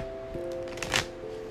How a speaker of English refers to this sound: The Empress just tried to come out in reverse here as I'm trying to shuffle.